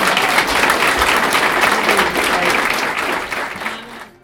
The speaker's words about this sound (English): So this concludes our panelists. Can you give them a big round of applause?